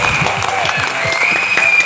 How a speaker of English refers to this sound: So round of applause. From everyone.